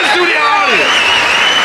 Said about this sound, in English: Somebody clapping. I'm happy if somebody's clapping.